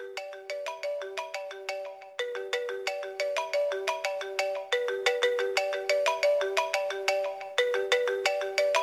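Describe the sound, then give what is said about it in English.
The iPhone marimba ringtone, sampled in a song, plays continuously, a bright, rapid run of struck mallet notes repeating in a bouncy looping pattern, clear with no voices. “And the entire time there's the iPhone marimba. Yeah. He samples it. Ringtone playing.”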